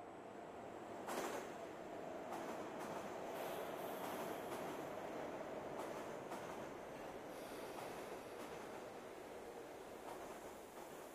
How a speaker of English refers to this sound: It's late at night and I'm coming home on the G train. It's probably 2 or 3 o'clock in the morning.